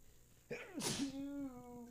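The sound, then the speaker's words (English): A single loud sneeze: a short voiced intake building into a sharp, hissing burst, followed by a drawn-out voiced exhale that trails off. “Oh, I got to sneeze.”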